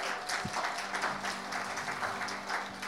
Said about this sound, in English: And let's give him a round of applause.